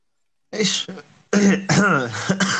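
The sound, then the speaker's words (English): A sharp cough followed by a brief pause, then a longer run of harsh, raspy, loud coughing fits from a person who is sick, with no talking. “So like when I cough, don't think I'm like laughing at you or whatever.”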